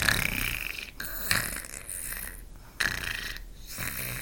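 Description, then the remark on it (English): Aliens snore as they all fall asleep: rasping, breathy snores repeat in a slow, steady rhythm, about three in a few seconds, fairly loud, with no talking around them. “They were all falling asleep, snoring.”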